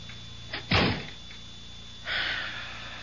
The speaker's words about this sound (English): Shut the door.